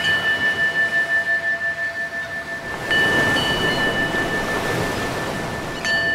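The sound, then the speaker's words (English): A ship's bell rings with a sustained, bright metallic tone over a steady wash of surf-like noise that pulses rhythmically, then swells louder, with fresh strikes adding new overtones. “And there goes a ship ringing its bell right now.”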